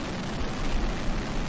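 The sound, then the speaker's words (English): A dense, continuous roar of explosions merges into one rumbling wall of sound as every firework of a San Diego fireworks show goes off at the same time after the show went awry, loud and sustained without distinct individual pops. “when San Diego was having their fireworks show and then it went awry and every single firework went off at the same time?”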